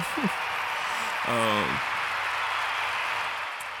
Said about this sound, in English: Round of applause. Oh, happy shit. Birthday.